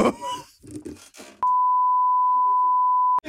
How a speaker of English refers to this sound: I'm sorry. I can beep that out. I'm glad we're not live.